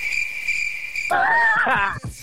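A steady, high cricket trill rings alone for about a second before a louder, rough, voice-like burst with shifting pitch abruptly takes over.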